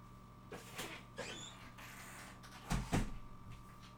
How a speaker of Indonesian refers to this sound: Kayaknya aku nutup pintu dulu biar asik.